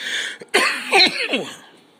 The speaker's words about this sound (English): I really don't like coughing. And that's just like the after. I was holding it in. But it always catches up to you.